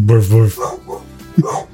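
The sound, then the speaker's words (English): A dog gives two loud, deep barks in quick succession, followed by quieter muffled sounds and a voice speaking softly. “She's barking at the helicopters mating on your roof.”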